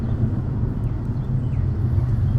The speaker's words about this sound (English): Is that a motorcycle in the background right now?